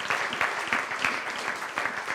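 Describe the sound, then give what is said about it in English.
A crowd applauds the birth of a baby, with many overlapping claps forming a steady, dense patter at an even, moderate loudness throughout. No one speaks over it. “We can clap for that.”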